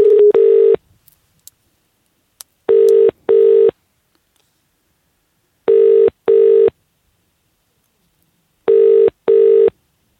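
A telephone ringing tone heard down the line while calling an upholsterer: four double-pulse rings repeating at a steady pace, each a short pair of buzzy tones separated by silence, with no voices.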